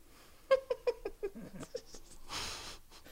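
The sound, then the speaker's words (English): A dog snores with a quick run of short, wheezy nasal snorts that taper off, followed by a longer, breathy rasp of an exhale. No one speaks. “I can definitely hear your dog.”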